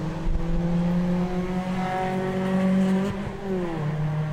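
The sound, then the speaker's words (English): A Mazda Miata engine drones loudly and steadily on a racetrack, its pitch shifting as it passes and then fades, with no voices present. “Miata sounds good.”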